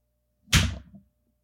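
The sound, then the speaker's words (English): A single sharp, loud hand clap with a bright, crisp attack that rings out briefly before fading, heard alone with no talking. “That was a loud clap.”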